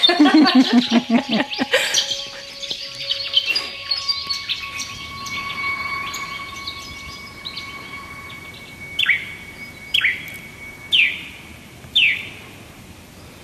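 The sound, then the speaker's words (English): A yellow-faced honeyeater in North Tarramurra, northern Sydney, gives a persistent picking call: four sharp, evenly spaced notes about a second apart, following a busy mix of bird chatter and a steady whistled tone. “it's a yellow-faced honey eater”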